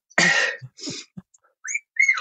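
Calpernia Addams's two pet birds, Shug and Jelly Bean, whistle a few short, rising notes of a song near the end, just after a brief harsh, noisy burst and some soft clicks. There is no talking.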